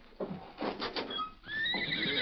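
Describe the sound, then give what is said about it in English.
A horse, Silver, the Lone Ranger's horse, neighs loudly, a rising, quavering whinny with bright harmonic bands that builds and holds strong through the end, preceded by a few snorting, breathy bursts. “Wait till I get a look at your horse.”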